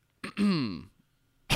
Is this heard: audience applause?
no